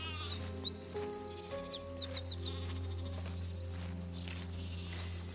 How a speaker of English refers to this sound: It was a bright sunny day. And as we arrived, we could hear the wind, the nearby sheep, and the birds chirping.